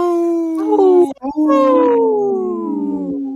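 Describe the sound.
A person imitates a wolf with two loud howls: a sustained wavering call, a brief break, then a longer one that slowly slides down in pitch.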